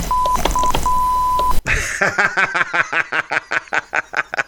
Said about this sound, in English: Wait, I actually have a beep. You don't want to call them a...